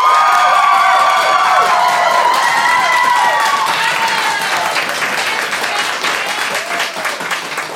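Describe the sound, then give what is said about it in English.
A live audience bursts into loud, sustained applause mixed with cheering and high-pitched shouts and whoops, applauding to vote for Dungeons & Dragons as the game for Family Game Night; the dense clapping holds steady before easing slightly toward the end. “A strong representation there, but if you believe that Dungeons & Dragons is the game to play on Family Game Night, please applaud now.”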